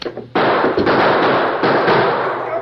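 A loud volley of gunshots erupts after a brief quiet start, sharp cracks piling into a dense, roaring barrage that keeps going to the end, with a few harder reports standing out.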